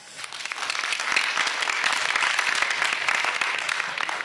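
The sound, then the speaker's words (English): A panel audience claps to vote, a dense wash of many overlapping hand claps that swells quickly and holds at an even, fairly loud level without voices on top. “And you guys get to vote with clapping. Can everybody clap?”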